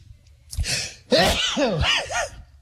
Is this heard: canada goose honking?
no